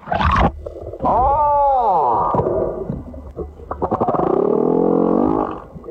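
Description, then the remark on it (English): A male humpback whale sings for a mate in long, sweeping moans and swooping tonal calls, with a brief low grunt and a rising, pulsing wail, loud and resonant, no voices present. “Humpback whale singing his heart out for a mate.”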